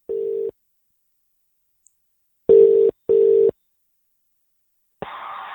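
Telephone line tones play alone as a phone call is placed: one short steady beep, a pause, then a quick double beep of the same pitch, followed by a soft hiss as the line opens.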